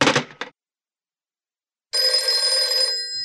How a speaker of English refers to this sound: the ringing of the telephone fills Nathan with just such a hope